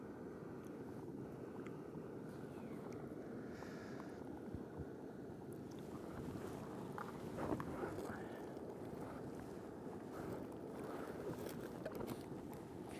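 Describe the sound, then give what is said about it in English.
A steady, dense bubbling and hissing of liquid boiling in a pot, continuous, with faint wind noise in the background and no voices. “Bubbling away.”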